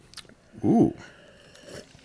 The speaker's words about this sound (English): Remember, sip it, don't shoot. All right, we're sipping this right now.